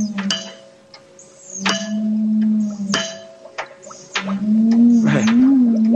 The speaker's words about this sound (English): Now, notice what happens when I tap on the glass jar.